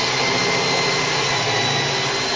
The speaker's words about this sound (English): Yeah. I'm in my room. I got a power drill that's going right through. Went right through the side of the TV. I put a hole in the TV.